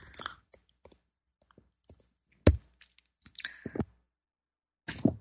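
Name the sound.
sipping tea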